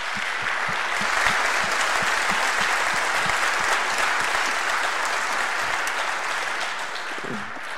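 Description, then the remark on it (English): A large audience at Cape Cod Church applauds the host families steadily, a dense wash of clapping that holds loud and even for several seconds before easing slightly at the end. “Will you give them a round of applause one more time?”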